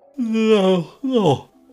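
yawn

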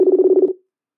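telephone call being dialed

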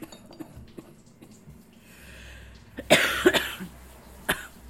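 coughing

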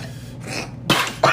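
water bubbling

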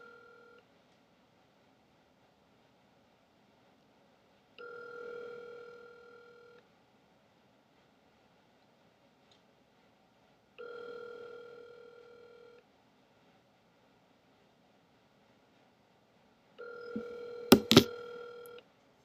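phone line tone

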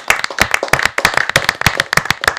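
hand clapping

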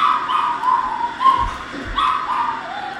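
dog howling and barking

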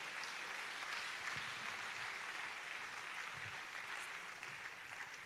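audience clapping

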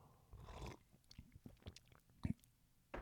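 sipping coffee

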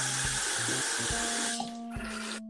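running water

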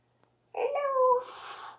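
cat meowing

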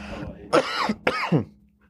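coughing and throat clearing

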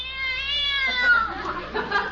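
cat meowing

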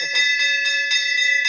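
victory bell ringing

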